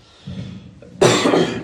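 A raspy cough from a preacher during a sermon, with a muffled low start, then a harsh, loud burst lasting about half a second, heard alone without talking.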